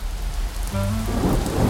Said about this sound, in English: It was pouring rain. We headed over, umbrellas in hand.